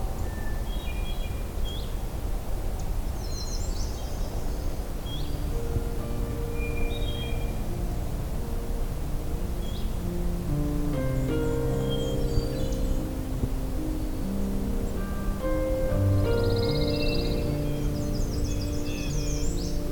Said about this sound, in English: Looks to be a kind of an unusual song of the myrtle warbler.